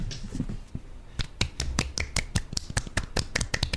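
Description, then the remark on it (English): Soft, polite golf clapping by people clapping together: a steady patter of light, quick claps that starts after a brief quiet moment and continues evenly, restrained in volume, with no talking. “Hang on, we'll all do it together.”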